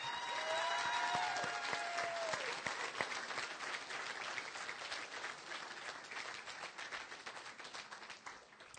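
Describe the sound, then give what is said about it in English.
Sustained applause from an audience for the candidates and a panel of questioners at the Engage ICT Democracy on Tap event at Roxy's Downtown. Dense overlapping claps hold steady and slowly thin, with a brief high whistle-like tone near the start. “And let's have another round of applause for the candidates and for our panel of questioners.”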